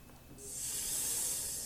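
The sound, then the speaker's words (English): A snake's sharp, sustained hiss rises in after a brief quiet start and holds steady, bright and airy, fairly loud, with no other sounds. “Snake? Yes.”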